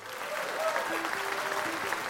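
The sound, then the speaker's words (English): Steady audience applause for the award recipients at the Mississippi Governor's Arts Awards fills the whole stretch, a dense wash of many hands clapping at a fairly loud, even level, with a few faint tonal murmurs or voices barely rising through it. “And let's give a big round of applause to our recipients.”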